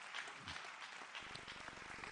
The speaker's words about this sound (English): Come on, clap your hands one more time and give him praise.